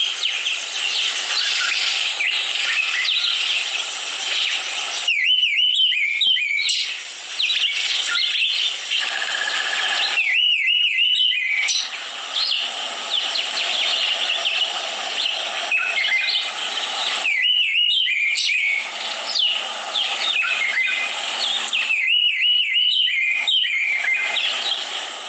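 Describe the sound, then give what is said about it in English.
A Karoo thrush sings steadily, repeating a bright, warbled phrase every few seconds over a continuous background of chirping birds, with no talking. “And now for the Karoo thrush. Now remember, I said that these things they look a lot alike, but listen to the sounds.”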